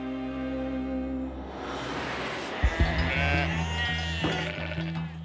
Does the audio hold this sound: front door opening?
no